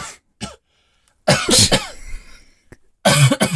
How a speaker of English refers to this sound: Why is … coughing?